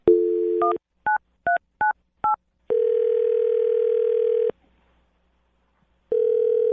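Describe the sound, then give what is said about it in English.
A steady dial tone, then four quick two-note keypad beeps as a phone number is dialed for a call from the Brooke and Jubal in the Morning radio show, followed by a long tone, a brief pause, and the tone returning. No voices. “I'm going to dial him right now and see what he has to say, okay?”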